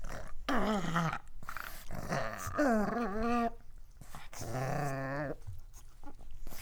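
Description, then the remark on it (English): Joey Kennedy's pugs grumble and growl in three or four drawn-out, wavering vocal bursts separated by short pauses, fairly loud with no one talking. “All the grumbles of pugs that also stood in as William Faulkner's ghost.”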